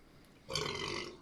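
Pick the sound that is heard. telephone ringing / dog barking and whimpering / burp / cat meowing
burp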